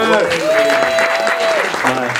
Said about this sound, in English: This is our first Black Chat Live. So give yourselves a round of applause for being here, first of all.